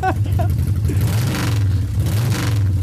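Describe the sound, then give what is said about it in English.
A motorcycle engine revs loudly within a song, its deep rumble sustained throughout with surges in pitch as the throttle is opened and eased. “It was just a motorcycle revving up for 3 minutes.”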